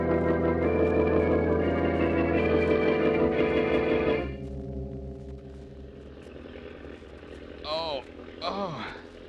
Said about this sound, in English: What's that roaring noise? An engine. An airplane engine. Jim's plane. You and I are in it.